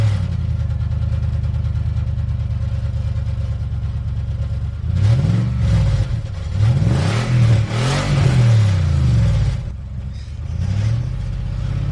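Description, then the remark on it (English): The engine of the Grease Lightning car idles steadily, then is revved hard several times in a row, the pitch surging up and falling back before settling to a rumble. Loud, with no talking. “How'd you get the car in the studio?”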